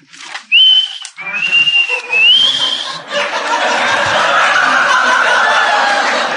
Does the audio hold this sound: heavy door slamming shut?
no